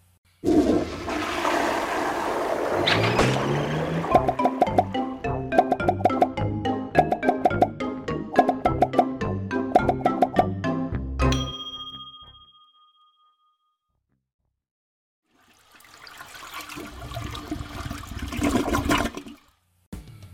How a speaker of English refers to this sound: Let's see how many flushes it takes to get those posterior Pop-Tarts to go down.